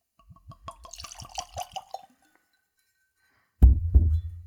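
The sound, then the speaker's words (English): Vodka glugs out of a cork-stoppered bottle into a clean Glencairn glass in a quick, clear run of about eight rhythmic gurgles. After a short pause comes a heavy thud and rumble. “In any event, I am tasting with a clean Glencairn glass, so let's go for a pour.”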